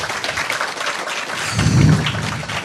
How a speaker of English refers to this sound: Let's clap. Round of applause.